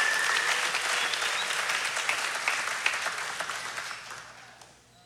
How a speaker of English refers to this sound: Some mom said yes to life. Let's give a round of applause for the moms that said yes to life.